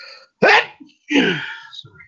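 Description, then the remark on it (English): A loud sneeze bursts out suddenly, followed by a second noisy exhalation trailing off, with a brief quiet pause between them and no talking. “God bless you.”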